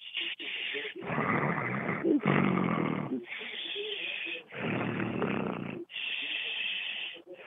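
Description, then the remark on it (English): A person fakes loud snoring, with several exaggerated rasping inhales alternating with breathy exhales in a steady rhythm. “If you pretend to snore right now, I'll give you a golden ticket.”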